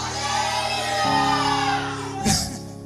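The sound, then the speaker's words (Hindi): An audience shouts hallelujah together in answer to a call of "praise the Lord", in a loud, sustained crowd roar of many voices, swelling midway and ending with a brief sharper burst of cheering. “सो मैं बोलूंगा जब प्रेज द लॉर्ड, तो आपको हालेलुया चिल्लाना और इतने शंख से भी बढ़कर ऊंचे शब्दों में.”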